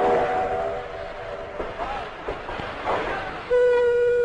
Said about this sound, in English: This is a story about trains, but modern, high-speed trains. This is what they sound like. Sleek, quiet. Average cruising speed, 250 miles an hour. And not a ripple on the surface of your drink.